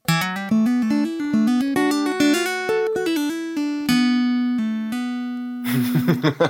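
Plucked guitar notes flow quickly in a legato run, hammer-ons and pull-offs linking the pitches with few picked attacks, then a brighter, noisier strummed burst at the end. No voices.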